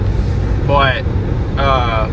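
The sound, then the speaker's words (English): A voice mimics a car speeding at over 90, two short rising, revving bursts separated by a brief pause, loud over a low background rumble. “I'm able to get my car up going over 90 when I started listening to that song at that point. Skirt, skirt.”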